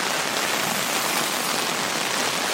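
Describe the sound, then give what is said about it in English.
Steady rain falls in Chicago in a dense, continuous hiss, fairly loud, with fine pattering drops and no voices or breaks across the short stretch. “The National Weather Service says in the period since May 1st, the city's experienced more rain than in the same time frame of any other year on record, going back to 1871.”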